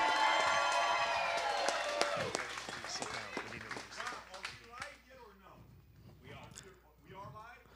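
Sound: audience applause and cheering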